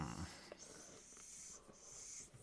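A dog snorts and wheezes, a raspy, airy breathing sound with a couple of short nasal snuffles, fairly quiet and alone without talking.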